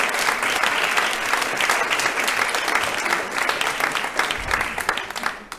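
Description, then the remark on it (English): Sustained applause from a crowd for a presenter after his current news segment on a show, a dense steady patter of many hands clapping at an even loudness for several seconds before tapering slightly at the end. “Man, I wish I'd get that kind of applause.”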